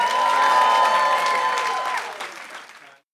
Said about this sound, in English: Let's get a round of applause as we go to commercial break.